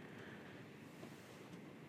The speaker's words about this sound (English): Starting to rain a little bit. I wonder if y'all can hear that.